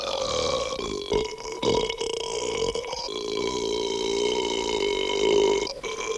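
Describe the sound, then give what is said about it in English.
A long, loud, drawn-out burp rumbles for several seconds, resonant, with a few sputtering breaks early on before it settles into a sustained, throaty belch, let out by Booger after he drinks the rest of a beer can. “He blows, I'm assuming, ashes off the top of a beer can, drinks the rest of it, and lets out a large burp.”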